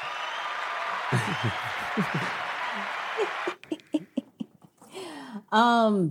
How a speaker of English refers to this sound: Back with the claps.